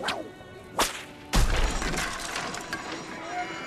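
A whip made from ropes cracks three times at uneven intervals as sheep and cattle are driven out of the temple, the last crack loud and heavy with a low thump, followed by a lingering rumble of scuffling noise.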